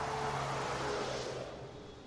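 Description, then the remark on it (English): A steady, rumbling roar of road traffic and trucks on the A40 flyover with a low engine drone, loud, easing off slightly toward the end. No voices. “A delightful concrete monstrosity, which blots out the horizon with a grey sunset of hazy smog, a birdsong of roaring trucks, and a hooty jam of window lickers heading to a job they hate.”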